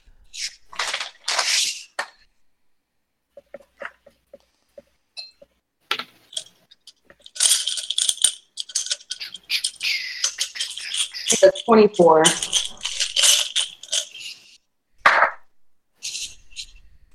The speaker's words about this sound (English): None of that dice rummaging was Dracon.